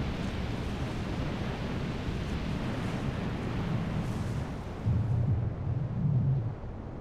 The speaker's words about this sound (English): When the erupting magma comes into direct contact with a body of water, the very large contrast in temperature causes both the water and the magma to explode.